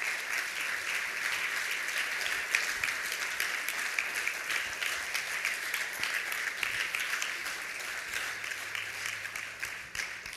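A church audience applauds steadily for about ten seconds while a couple makes their way to the stage, a dense, even wash of many hands clapping at once with no voices rising above it.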